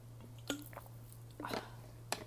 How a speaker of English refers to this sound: Gonna drink some water.